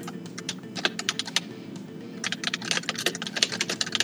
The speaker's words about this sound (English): That's my typing.